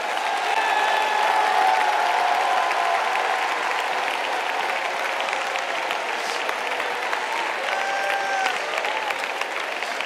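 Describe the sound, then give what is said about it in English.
A large crowd claps steadily for about ten seconds to the Lord at a church service, a dense, sustained roar of applause with faint cheering voices and whistles rising above it. “Why don't everybody clap your hands to the Lord?”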